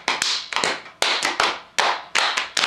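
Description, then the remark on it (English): Hand claps, used in place of drums, beat out a quick syncopated rhythm, about ten sharp, bright hits in uneven clusters, each trailing a brief ringing decay, with no voices. “That's clapping like last time.”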